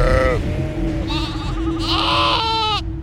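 Sheep bleat loudly, a few wavering, nasal cries overlapping one after another for about three seconds against a low rumbling background.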